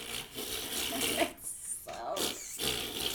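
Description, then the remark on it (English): A voice makes wet, sputtering fart noises with the mouth, several moist raspy bursts broken by brief pauses, fairly loud, with no clear words. “That was kind of sounded like it though, right? Like, kind of wet farts.”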